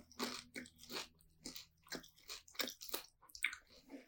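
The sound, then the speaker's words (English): Loud crunching as someone bites and chews crispy fried pork lumpia, with about eight sharp crackly crunches in a steady rhythm roughly every half second and no talking. “Good crunch.”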